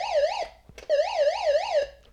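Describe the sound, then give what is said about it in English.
An electronic alarm wails in rapid, warbling up-and-down sweeps, two loud bursts separated by a brief pause, clear with no one talking. “Oh, we got a little alarm here.”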